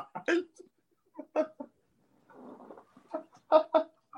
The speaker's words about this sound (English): like singing with a bird in a cage.